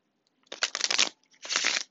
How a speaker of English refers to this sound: I cannot guarantee that you will hear me shuffling the whole duration of this reading, but based off of faith, we will go from here.